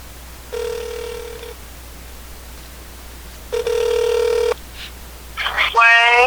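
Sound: telephone call ringing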